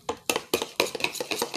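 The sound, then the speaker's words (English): A spoon stirs briskly in a cup, clinking against the sides in a quick, steady rhythm of about six taps, clear with no voices. “Stir. Sip and stir.”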